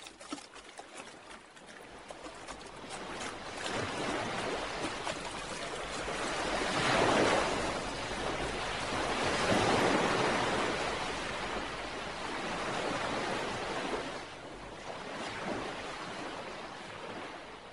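Steady surf on a sea under a glowing ceiling, stretching as far as the eye can see, with broad, hissing swells that rise and fall in slow surges, peaking every few seconds before receding. No voices, just continuous open-sea wash.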